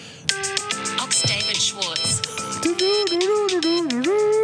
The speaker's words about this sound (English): The standard one. Nothing crazy. So you've got a special ringtone for me. Here's yours.